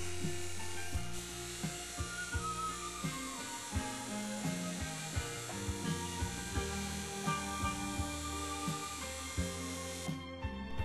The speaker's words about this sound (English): Using buffing compound on your polish wheel keeps your rods and spacers nice and shiny.